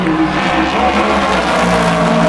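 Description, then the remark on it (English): A loud GT race car engine roars steadily as it passes between grandstands on either side, a dense mechanical growl with reverb from the grandstands, filling the whole moment without any voices. “But it's all about the sound here, because you get the reverb from these grandstands on either side. That was the Rebellion and the Bicolis car, by the way. Here comes a GTM.”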